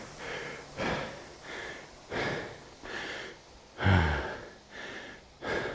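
Loud, heavy panting after exertion during a workout rest period, with rapid rhythmic inhales and exhales about every second, one deeper gasp near the middle, no talking.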